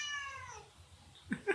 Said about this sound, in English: But, oh, look, the cat. We're gonna end it off with the cat. Come on, Azu. You're gonna say goodbye. To the people.